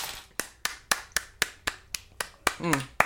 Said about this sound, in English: Big round of applause.